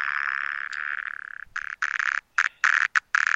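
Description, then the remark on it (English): A cicada's harsh distress buzz as it is taken out and picked up, loud, rasping steadily for about a second and a half, then breaking into several short, irregular bursts separated by brief silences. “Not exactly a song. It's more like a put me down sound.”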